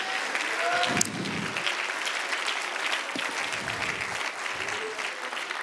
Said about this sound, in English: Come on, I'll encourage you this morning. Why don't we clap hands to the Lord? Why don't we lift our voice just for a moment? Why don't we just shout for a minute?